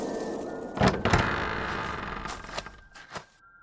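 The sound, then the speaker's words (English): A door opens with a couple of solid thunks near the start, followed by a scraping, creaking swing and a few softer knocks as it settles. No one speaks. “Up there. A door.”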